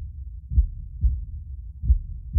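A muffled, low heartbeat thuds steadily, a handful of soft, deep thumps spaced evenly over a constant rumbling undertone, with no voices.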